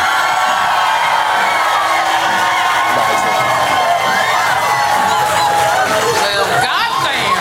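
A Latitude audience cheers and claps loudly and steadily to vote for one side of a debate, with whoops and lively chatter blending into a continuous roar that holds for several seconds.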